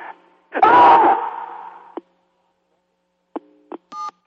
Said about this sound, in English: Screaming is a release, but I don't have that much to release because I think it's kind of funny after listening to your message, so I'm just going to scream a little, okay? Okay, here I go.